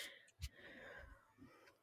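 A faint, raspy snore drawn out over a couple of seconds, with a wheezy breathy rattle and a soft low thump near the start, heard alone at a distance.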